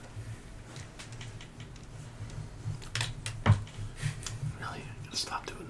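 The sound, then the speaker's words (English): Dice being fiddled back and forth make soft, irregular clicks and taps, a handful of quick knocks clustered together, quiet, over faint whispery background noise. “I'm like OCDing my dice, fiddling with them back and forth.”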